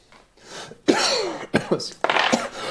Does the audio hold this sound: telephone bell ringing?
no